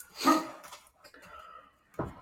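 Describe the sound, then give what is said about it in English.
A dog lets out a sharp, loud bark, followed by a quieter whining sound and then a second bark near the end. No one speaks. “Bubba, the other dogs are allowed to pee and poop and pee in peace”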